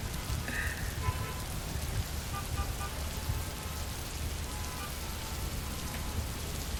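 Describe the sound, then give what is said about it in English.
Steady rain patters on a hard surface, a dense, even hiss with scattered drips, continuous throughout with no voices. “So, when was the last time you just slowed down and listened to the rain?”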